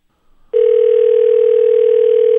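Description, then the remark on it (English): A faint handset rustle, then a loud, steady telephone dial tone switches on and holds unbroken to the end as a call to a work phone is tried, with no ringing pattern and no voices. “All right, well, I'll try you on your work phone, because I know this is a big crisis.”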